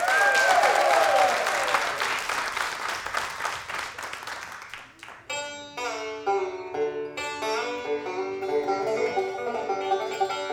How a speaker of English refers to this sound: Ladies and gentlemen, put your hands together